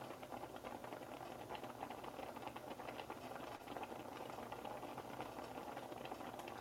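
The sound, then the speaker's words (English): A pot of quinoa and liquid bubbling steadily on the stove, a dense, continuous simmer of small pops and gurgles, with no talking. “you can probably hear the pot bubbling now”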